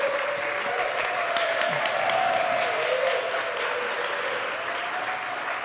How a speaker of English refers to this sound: It always gets me when you guys applaud when people come up. I only ever get applause when I sit down.